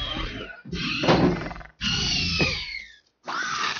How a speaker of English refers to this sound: Just every raptor cry throughout the entire thing.